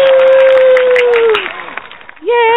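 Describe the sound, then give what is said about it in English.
A burst of studio audience applause with a long, sustained whooping cheer over it, fading briefly before another voice cheers upward at the end. “You're going to get a bunch of applause here.”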